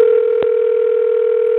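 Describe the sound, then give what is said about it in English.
A steady, loud telephone dial tone hums continuously as a call is being placed, with a brief click near the start interrupting it. No voices are present. “Let me do this again. I ran out the room. We call again.”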